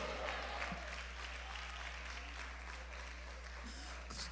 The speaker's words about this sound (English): Clap your hands and shout glory in here.